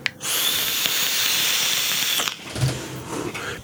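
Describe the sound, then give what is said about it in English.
Airflow through a vape RDA makes a steady, airy hiss with a thin high whistle running through it that lasts about two seconds, then cuts off abruptly, leaving quieter rustling and faint clicks. “Other than the whistle, it's actually really nice RDA.”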